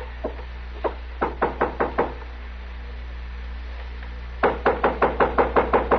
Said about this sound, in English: This is the worst hotel in Dodge. This the room? This is it. All right, knock on the door. Tell him you want to talk to him. Okay. But you're going to wish I hadn't. Knock.